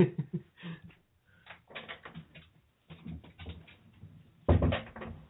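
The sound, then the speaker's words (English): A door is opened to let a puppy out to relieve herself: a run of clicks, rattles and knocks from the latch and handle, with a louder clunk near the end. No voices. “Hold on, I have a little frustrated little puppy that needs to go out the door so she can go to the restroom.”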